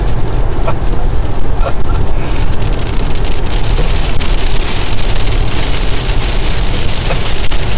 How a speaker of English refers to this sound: I wonder if any of this is like listenable with the fucking rain.